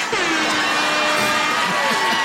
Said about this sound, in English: Air horn.